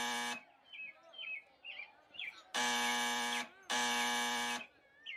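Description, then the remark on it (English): A loud, harsh door buzzer, pressed while delivering a parcel to a house on Duke, sounds in three flat, steady bursts, the last two long and close together, with soft bird chirps twittering in the quieter gaps between. “I buzzed, but there was no answer.”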